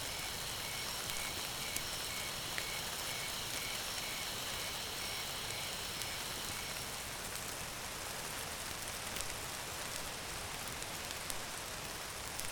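Embers of a slowly subsiding fire crackle steadily, with scattered sharp pops and snaps over a soft, constant hiss. There are no voices.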